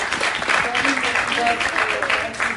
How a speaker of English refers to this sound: we give her a round of applause.